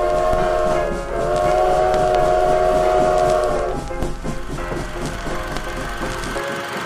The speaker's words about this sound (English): There's a train coming, sir!